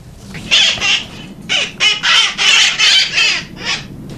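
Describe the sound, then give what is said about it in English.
A parrot, one of the wild parrots living in San Francisco, squawks loudly inside a man's house, letting out about seven harsh, raspy calls in quick, uneven succession with brief gaps between them and no voices around. “Sometimes he lets the parrots into his house, and this is one of those parrots.”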